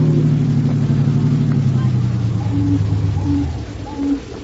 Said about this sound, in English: Don't drive so fast, Brother Harry. We don't want to attract the police.